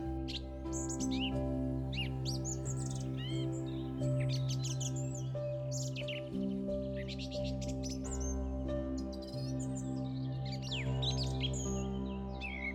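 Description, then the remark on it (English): Several birds chirp and tweet in quick, scattered bursts throughout in a forest of tall trees along a path, layered over a steady, sustained low droning tone that holds beneath them the whole time. “As you walk along the path, you hear birds chirping happily around you, and you pause for a moment to take it all in.”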